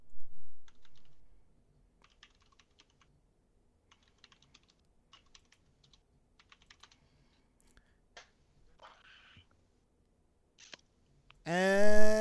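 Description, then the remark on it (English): Rapid, quiet bursts of clicking keys as someone types furiously on a computer keyboard come in quick clusters with short pauses, framed by louder noises at the start and a brief tonal, voice-like sound at the end. “Oh, he's typing away furiously.”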